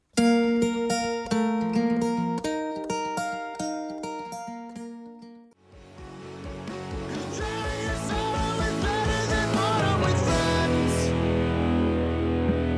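A song plays with steady, stacked tonal chords and rhythmic strikes, then pauses briefly before a fuller, denser section with driving beats and rising instrumentation continues loudly to the end.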